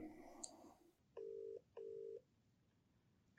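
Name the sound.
phone call ringing tone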